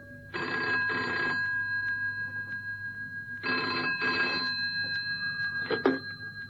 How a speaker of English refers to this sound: Cannon had hardly sat down when the phone rang on the direct line.